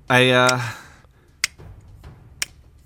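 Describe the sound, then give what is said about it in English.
A short voiced sound gives way to sharp, dry clicks spaced about a second apart, a person mimicking with their mouth the steady tick of a clock counting down a 60-second timer, fairly quiet. “I make a good fucking clock.”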